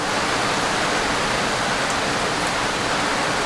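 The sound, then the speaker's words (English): Heavy, torrential rain pours down in Bogota, Colombia, in a dense, unbroken hiss that stays loud and steady throughout, with no voices or other sounds breaking through. “So you can imagine my surprise when I landed in Bogota and was greeted by a week of pretty much non-stop torrential rain.”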